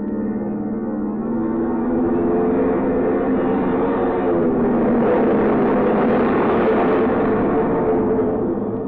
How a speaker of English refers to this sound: The plane finally turns around in a half circle into the wind. The pilot guns the engines for a few seconds, and then the plane rushes down the runway towards you.